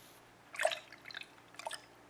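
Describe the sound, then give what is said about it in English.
Water splashes and drips into a sink in a few short, wet bursts as a man shaves, fairly quiet, with brief gaps between them and no one talking. “Is that water really hot?”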